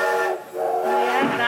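A steam train whistle blows loudly and steadily for over a second, heard from aboard the moving train, its harmonic tone briefly sagging and bending in pitch near the end over a breathy hiss, with no talking.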